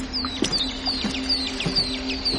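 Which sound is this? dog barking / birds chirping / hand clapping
birds chirping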